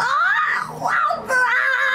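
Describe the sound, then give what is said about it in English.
A voice imitates a howling baby yeti with loud, wavering high-pitched wails in three swooping pulses, rising and falling like a pained animal cry, with no words spoken. “Like, I'm just gonna maybe sound like a baby yeti or like an animal that's hurting.”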